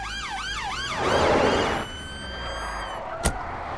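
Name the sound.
police car sirens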